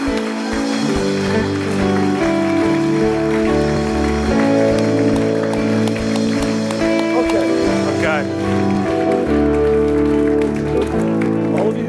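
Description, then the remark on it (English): A large audience gives a great clap for the Lord, clapping steadily and loudly throughout, a dense wash of applause over sustained musical tones, with no clear pause from start to finish. “Let's give the Lord a great clap. Een grote applaus geven.”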